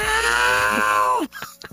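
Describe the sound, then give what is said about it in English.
A voice imitates the scream of Tom, the cat from the cartoon Tom and Jerry: a single loud, strained, sustained yell of over a second that sags slightly in pitch, then cuts off abruptly, followed by a few faint small sounds. “And then Tom scream.”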